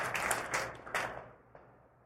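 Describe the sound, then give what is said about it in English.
A crowd claps together in a brief, moderate burst of applause that quickly thins and fades out within about a second, leaving a last stray clap before quiet. “We can clap for that.”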